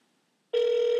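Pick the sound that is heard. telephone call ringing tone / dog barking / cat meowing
telephone call ringing tone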